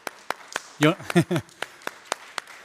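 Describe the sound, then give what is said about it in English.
Steady, sharp hand claps from a Trinity Church audience, about a dozen in an even rhythm, crisp, with a brief burst of voiced vocal sounds partway through. “So I'm going to give you a little round of applause.”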